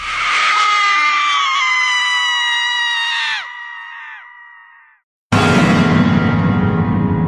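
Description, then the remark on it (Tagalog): A loud, sustained high-pitched scream holds for about three seconds, then falls away in drooping wails before a burst of harsh, noisy sound cuts in abruptly. “Malakas na sigaw na lang ang bumasag sa katahimikan ng buong paligid.”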